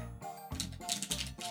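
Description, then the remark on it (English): A Poddex deck of cards being shuffled, a quick series of crisp, papery riffling clicks in uneven bursts over about a second and a half, with a faint low hum underneath. “Let's go ahead and get that shuffle.”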